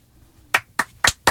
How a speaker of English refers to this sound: Give that a round of applause. I'm only clapping because